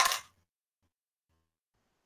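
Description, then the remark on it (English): A quick, bright clatter of dice tumbling onto a hard tabletop, lasting only a fraction of a second before everything falls silent. “You find the right dice.”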